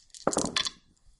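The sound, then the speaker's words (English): A short burst of dice, rolled for a gun attack in a game, clattering and rattling against a hard surface: a quick cluster of sharp clicks lasting about half a second before settling into quiet. “I actually have to roll everything out.”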